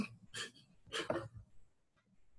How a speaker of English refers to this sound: Like I was saying, the dog in the back.